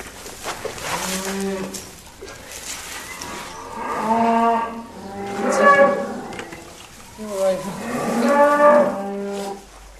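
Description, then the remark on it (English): A cow moos repeatedly over her newborn brown calf, a red Limousin, with several long, loud, resonant lows in a row, some rising and wavering, and a few softer grunting calls between them. “A brown-coloured, perfectly formed calf arrives. It's a red limousine, like his father.”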